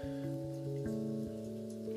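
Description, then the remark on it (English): A recording of steady rain played in the background patters continuously, with a low sustained tonal hum shifting pitch beneath it. No one speaks, and the wash of rain stays even and moderately loud throughout. “I have the rain playing in the background.”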